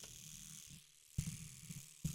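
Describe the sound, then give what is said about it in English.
A small electric eyebrow shaver, used for trimming eyebrows, buzzes faintly with a steady low hum, broken by a couple of sharp handling thumps as it's moved. “Okay, so I have this little, like, shaver thing. I don't know if you can hear it.”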